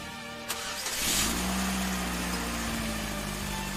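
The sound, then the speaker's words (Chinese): A car engine cranks over with a click, then catches and revs up, its steady mechanical drone rising in pitch and holding loud with no voices, in a dramatized scene about Russia's last tsar, Nicholas II, and his fondness for cars. “这辆机器是什么啊？发出那么大的噪音。 这个叫做汽车，功能就跟马车一样，只是更快更安全。”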